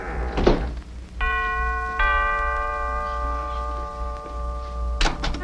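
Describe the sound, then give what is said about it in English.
A doorbell chimes a two-note ding-dong, its bright tones ringing out and slowly fading, framed by a dull thump before and a clatter after. “then leans in to bite his neck when someone rings the doorbell”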